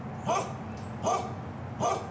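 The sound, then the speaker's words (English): Three evenly spaced dog barks ring out about once every three-quarters of a second, moderately loud against a steady low background hum, with no one speaking. “Those dogs are saying, please help us.”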